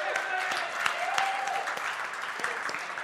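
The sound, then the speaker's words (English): A crowd claps steadily for a man who set up the chairs, a dense patter of many hands at even loudness, with faint murmuring voices and a few brief cheers mixed in. “Can we all just give him a round of applause?”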